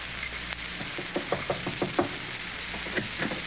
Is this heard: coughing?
no